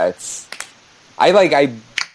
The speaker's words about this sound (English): Did you snap your fingers? What did you just do? Slap my knees with my knees. You slap your knee slapper. I slap my knees. It was a knee slapper.